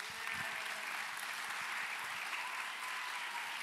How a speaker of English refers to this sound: Wow, you guys have some fans out there, right? People cheering for you.